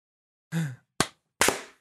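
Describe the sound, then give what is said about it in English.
Three sharp hand claps, made by people clapping together on an agreed count, slightly uneven in timing, each a bright, crisp smack that quickly decays, with no talking around them. “All right, we should clap.”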